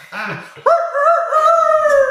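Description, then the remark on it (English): A person imitates a rooster crow: one loud, drawn-out, high-pitched vocal call held for over a second, after a short lower vocal sound. “What's your best rooster crow noise”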